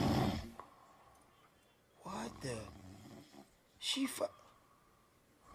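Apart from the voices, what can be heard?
person snoring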